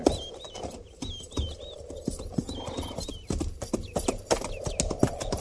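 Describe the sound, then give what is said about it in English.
Many horses' hooves clop in an uneven, overlapping patter as a company's horses move up to be watered, steady, with chirping birds high above and no talking. “Not after we water the horses. This spot's good enough. Yes, sir. Move up”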